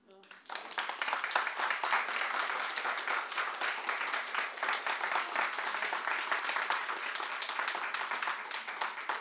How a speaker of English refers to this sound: Thank you. I have in my notes, hold for applause, which was very optimistic, but I'm glad that it turned out okay.